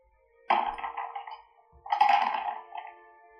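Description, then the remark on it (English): Percentile dice clatter and tumble across a hard surface in two quick separate rolls, each a short rattling burst that settles within a second. The sound is fairly loud, with no talking. “Alright, can you roll another percentage dice?”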